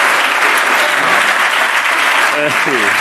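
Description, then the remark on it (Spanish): A crowd applauds steadily, a dense, loud wash of clapping that continues throughout, with a voice briefly speaking over it near the end. “Venga, un aplauso.”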